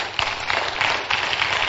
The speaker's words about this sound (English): Ah, is that how you clap or you unsaya or yeah?